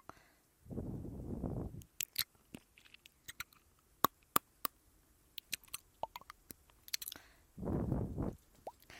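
ASMR ear-eating mouth sounds: a quiet run of wet clicks, smacks and pops in an irregular rhythm, opened and closed by two soft, muffled breathy rushes, with no talking.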